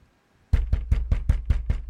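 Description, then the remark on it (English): Rapid, steady knocking on a door, about eight loud thumps in an even rhythm after a brief moment of quiet, with no voices. “What the heck is that? Somebody's at the door.”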